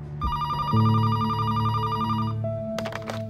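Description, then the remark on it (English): A telephone rings with a bright, electronic warbling tone, steady and fairly loud for a few seconds before shifting pitch near the end, with no one speaking; a phone call received by a library associate and researcher in the early 2000s. “According to the Kansas City Public Library's local history blog, in the early 2000s, a library associate and researcher received a phone call.”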